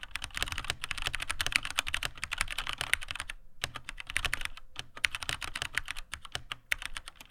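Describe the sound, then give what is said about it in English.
Rapid, continuous typing on a mechanical keyboard with brown switches, dense clacky keystrokes with a couple of brief pauses, no voices. “These are Browns. They sound, here, I'll just point the mic at it.”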